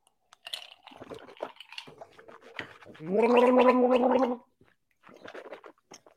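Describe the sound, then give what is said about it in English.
Someone sips and swishes ice water in their mouth to cleanse the palate during a whiskey tasting, with a loud, steady gargling burst of about a second in the middle, surrounded by small clicks and wet mouth noises. “I'll use some of my ice to or ice water to cleanse the palate.”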